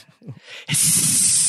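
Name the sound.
person hissing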